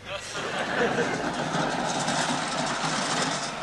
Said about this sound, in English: Do you see what I see? Good Lord. It's Jerry mowing his own lawn. Has the world gone mad?